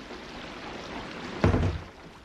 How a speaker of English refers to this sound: we can't stand out here. The rain's pouring off your roof. It's like standing under a waterfall.